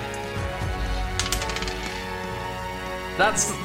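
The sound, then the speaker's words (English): Dice rolled for an attack in a tabletop role-playing game clatter across a table in a quick burst of sharp clicks that settle within a second, with a brief voice sound near the end. “This is such a cursed dice.”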